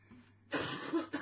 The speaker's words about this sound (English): Excuse me. I have a bit of a cough.